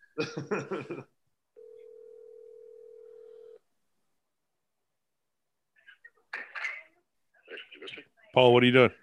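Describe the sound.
A voice speaks briefly, then a steady electronic phone ring tone holds for about two seconds as a phone call is placed, before going quiet; muffled voices and a louder voice follow.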